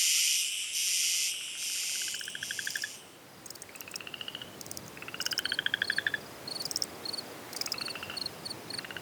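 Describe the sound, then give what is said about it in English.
A dense night chorus of frogs trilling and pulsing in overlapping rhythmic bursts, layered over a steady high hiss of insects, continuous with no voices. “Frogs likely joined the chorus about 200 million years ago, a date inferred from the timing of the split between modern singing frogs and their silent relatives.”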